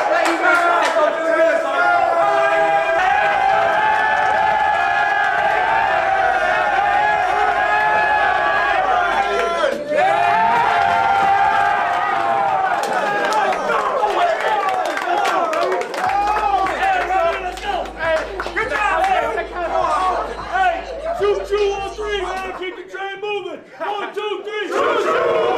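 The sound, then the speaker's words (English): The UTEP men's basketball team cheering and shouting together after winning their first game in the Conference USA tournament in five years, loud overlapping yells and whoops sustained throughout, with a few claps and rising excited bursts of voices. “That's coming from the UTEP men's basketball team after they won their first game in the Conference USA tournament in five long years.”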